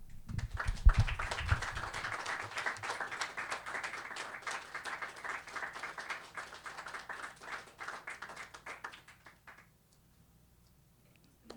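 An audience applauds with steady, dense clapping for about nine seconds, then the sound thins out and fades into near silence. No one speaks over it.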